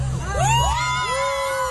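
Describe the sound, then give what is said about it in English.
An audience at a magic show cheers loudly in a spontaneous burst of clapping, yelling and screaming, with high rising whoops sweeping over a dense wash of voices and a steady low hum, lasting under two seconds. “That was a spontaneous applause cue. Clapping, cheering, yelling, screaming.”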